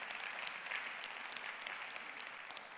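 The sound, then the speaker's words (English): An audience at International Community Church applauds, giving God a hand clap of praise: many hands clapping together in a dense, continuous patter that holds at an even level for a few seconds with no voices over it. “If you believe that this morning, will you give God a hand clap of praise this morning?”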